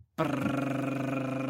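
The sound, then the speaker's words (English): After a brief silence, a voice imitates a drum roll with a steady, loud, buzzing rolled-tongue drone that holds one low pitch for over a second without pause. “You're kind of giving your own drum roll.”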